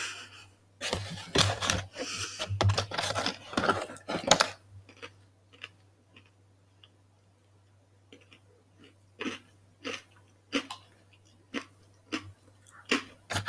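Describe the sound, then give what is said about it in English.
Close-up crunching of food right at the microphone, a dense burst of loud crisp bites followed by a steady series of sharper chews, with a low hum underneath. “You're gonna have to edit all that crunch out there. You're crunching right into the microphone.”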